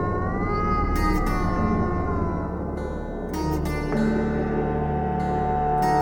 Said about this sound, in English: He aimed a vicious kick at it. The cat howled in pain and slunk off, miserable and wet in the rain.